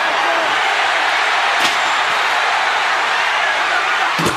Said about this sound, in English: And China just nailed Cactus. And a steel chair, and he doesn't like it.